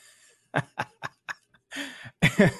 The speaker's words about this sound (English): But I have to cough. Hold on. Oh, my God.